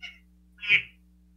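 phone notification sound

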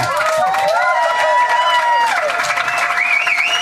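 audience applause

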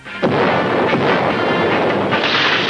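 cannon firing

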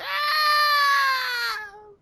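person screaming

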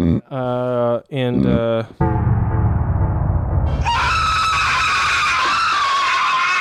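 scream sound effect

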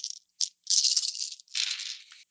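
dice being rolled

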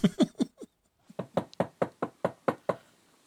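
knocking on a door

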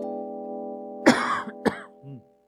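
coughing

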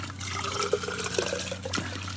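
water trickling

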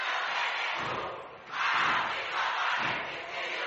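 basketball crowd cheering

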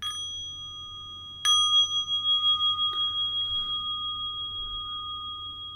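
bell ringing

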